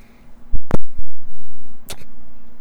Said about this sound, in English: Was that you blowing on it? That was me blowing on the dice. Oh, it sounds like you farting.